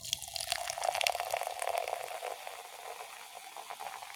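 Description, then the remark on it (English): Grape-flavored sparkling water pours steadily into a little pink cup, a continuous fizzing gush with bright crackling bubbles that stays strong for a couple of seconds, then settles into a softer hiss. “Then the pour, my favorite.”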